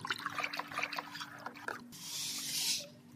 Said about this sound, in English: Now I have to pour this into the tank. So this tank is basically the average composition of the ocean, and we're going to be now adding different parcels of water that have different temperatures and salinities, so therefore different densities.